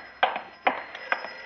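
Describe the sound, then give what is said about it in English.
A telephone rings in three short, evenly spaced bright bursts, each jangling briefly before fading, with a faint steady hum underneath and no voices. “Oh, dear, the telephone.”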